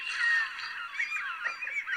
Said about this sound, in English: This is what a seagull sounds like.